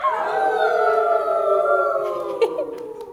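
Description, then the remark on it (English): Several voices of people playing wolves in a group role-play game imitate wolf howls together in a loud, sustained chorus, wavering and slowly sliding down in pitch for about three seconds before tapering off. “And wolves, can I hear a howl?”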